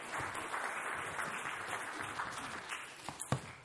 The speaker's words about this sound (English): Thank you, Jake. A round of applause for Jake.